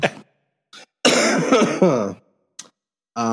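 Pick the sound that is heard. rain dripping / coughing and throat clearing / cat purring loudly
coughing and throat clearing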